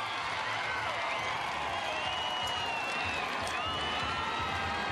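A large crowd at Garden Square, heard through a monitor, cheers in a dense, unbroken roar, many voices blending into a steady wash of noise that stays loud for the whole stretch without any pause.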